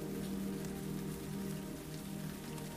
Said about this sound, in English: The rain trickles down the window panes, melting the coating of ice crystals in its wake.